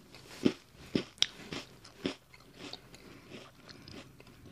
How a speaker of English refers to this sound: Yeah, a crispy cookie.